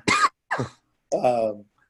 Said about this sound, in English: As …'s coughing away there, you better be okay, man.